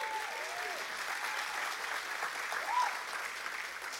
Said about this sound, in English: So let's honor them by giving them a hand clap.